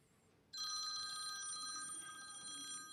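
A phone rings loudly and continuously as an audience member dials its number during a service, starting abruptly after a brief quiet moment and holding a bright, shimmering electronic bell tone to the end, with no voices.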